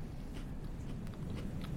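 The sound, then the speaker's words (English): Quiet crunching as a piece of salted caramel chocolate is bitten and chewed into a microphone, with several small irregular crunches over a low, steady background rumble and no talking. “Get the crunch in the microphone.”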